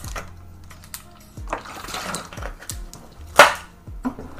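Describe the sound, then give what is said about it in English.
Someone drinks water from a glass: soft handling clicks and faint sips, then one sharp, bright clink of the glass partway through, with no talking. “Wait, let me just drink some water.”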